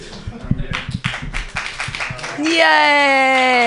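A crowd claps in a quick, uneven patter of sharp slaps for a couple of seconds, then a loud, sustained high-pitched cheer rises over the applause.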